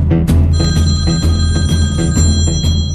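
A radio host's phone goes off during a broadcast, ringing with a fast, repeated trilling pattern of pulses, loud, over a steady low background rumble. No one speaks.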